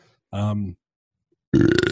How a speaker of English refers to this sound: In typical lager fashion, I'm going to burp the hell out of the show.